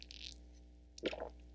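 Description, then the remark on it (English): A soft hissing sip of water, followed about a second later by a single wet, squishy gulp as it is swallowed, heard over a low steady hum with no talking. “Don't know if you heard that, but people say I have the loudest swallowing, like, out of everybody on Earth.”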